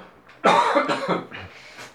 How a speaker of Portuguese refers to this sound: Todo mundo tá feliz de tossir, cara.